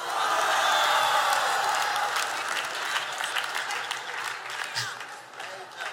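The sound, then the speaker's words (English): A large crowd erupts in loud, sustained applause mixed with shouting and roaring voices, a dense wash of clapping that stays strong and tapers slightly toward the end. “Somebody roar at that thing.”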